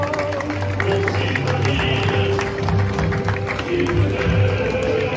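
A crowd at a parade claps and cheers outdoors for the Aurora Police Department Honor Guard, steady applause with a broad murmur of voices and scattered noise, sustained at moderate loudness throughout.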